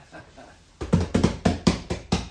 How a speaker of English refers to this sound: Give it a clap. Bam.